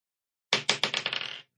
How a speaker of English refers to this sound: I want him to do a spin attack with a sword and hit them all. All right, roll d20.